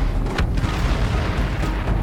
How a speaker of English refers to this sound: Then a massive explosion wrenched the air.